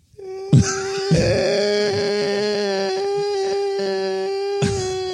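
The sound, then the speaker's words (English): A person imitates two cats yowling outside a house at night, drawing out a long, wavering, high-pitched wail that sounds almost like a crying child, with a few throaty breaks along the way. “And these two cats outside my house were making noises. No. That I didn't know cats could make.”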